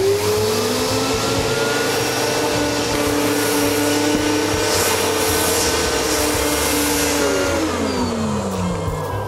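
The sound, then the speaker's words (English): Several vacuum cleaners drone loudly and continuously, a dense motor whine with steady low hum and shifting pitched tones that rise and fall slightly, with no talking. “The weather today will include clouds, rain, mildew, plinths, hailstones, thunder, lightning, and an outbreak of hoovers.”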